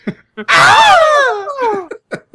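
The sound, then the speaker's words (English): A person imitates the Wilhelm scream as part of a Star Wars Foley bit: a single loud, strained cry lasting about a second that slides downward in pitch, framed by a few short vocal bursts before and after. “Throw a Wilhelm scream in there.”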